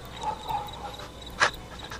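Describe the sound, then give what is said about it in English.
A dog whimpers in thin, high whines, then gives one short, sharp bark near the end. The sounds are fairly quiet against a low background hum. “They're really giving him some, like, dog sounds to work with.”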